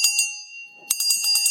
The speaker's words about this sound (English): So what do you think of the bell? I'm sorry, say again. What do you think of the bell? Oh, it's great.